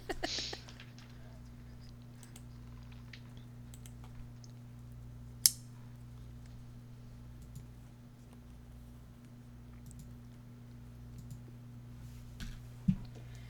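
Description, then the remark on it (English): A few sharp, isolated clicks of dice being rolled and knocking on a hard surface while a player preps them, spaced far apart with long pauses, over a constant low electrical hum. No one speaks. “Trying to prep my dice so I don't get more shitty rolls.”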